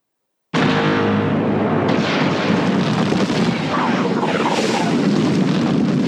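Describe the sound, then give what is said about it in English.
A seismic charge explosion erupts after a brief silence, a loud, dense roaring blast that stays sustained for several seconds, with faint warbling sweeps rippling through its rumbling tail. “sound effect from Attack of the Clones, the seismic charge explosion”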